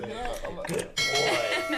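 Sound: bell ringing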